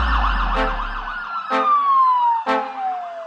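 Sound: police siren wailing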